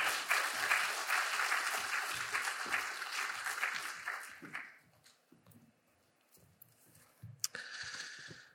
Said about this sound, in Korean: 우리 한번 감사의 마음을 담아서 크게 박수로 환영하겠습니다.